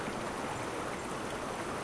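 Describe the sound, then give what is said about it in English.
A river current flows with a steady, continuous rushing wash of water, even and unbroken throughout, fairly soft and with no voices present. “For the next 3 minutes, let your thoughts come and go alongside the current.”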